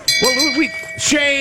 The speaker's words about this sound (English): Shame. For playing the shame bell. Shame.